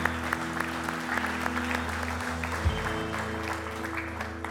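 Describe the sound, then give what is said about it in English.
A room full of people claps steadily as a clap offering after a prayer, a dense patter of hand claps over a low constant hum, holding at a moderate level for several seconds. “Can we give a little clap offering, man?”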